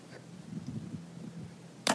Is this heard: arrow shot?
yes